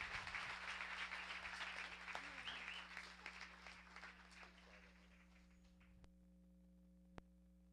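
A crowd applauds steadily for several seconds, a dense patter of clapping that gradually thins and fades out, leaving a low electrical hum and a couple of faint clicks.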